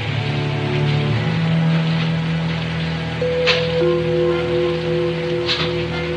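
Steady rain falls in a continuous, even hiss, with low sustained tones humming beneath it and a couple of brief, slightly louder splashes partway through. No one speaks.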